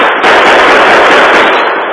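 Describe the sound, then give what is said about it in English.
A loud, dense barrage of gunfire in a saloon fight, guns blazing from behind the long bar and from both doors and all windows, many shots blurring together into one harsh, crackling roar that holds steady for about two seconds. “But guns blazed from behind the long bar and from both doors and all windows.”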